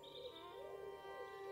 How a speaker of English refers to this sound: The day I was brought away from my home, the wind was quietly kissing the young crops. The birds were gently chattering in the fields.